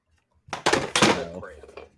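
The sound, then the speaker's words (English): A loud clattering crash as a shelf and its contents are knocked off a wall: several sharp thuds and rattles in quick succession, then a short fading jangle. “He's knocking shit off his walls.”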